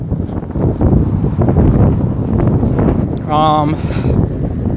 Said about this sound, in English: I'm gonna go to the store really quick. I don't know if I'm gonna keep recording when I get out because it's really windy. So I don't even know if you can hear any of this anyway, so.